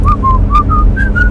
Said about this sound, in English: Oh, did you whistle too? Yeah, I whistled.